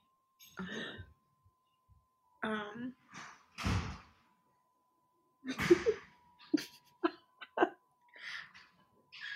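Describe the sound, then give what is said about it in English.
A series of heavy thuds and bangs, like a door slamming shut several times as someone enters, with a couple of loud, booming impacts among lighter knocks and rattles. “I don't understand what these people do, but every time someone enters a door, it happens like 3 times in once.”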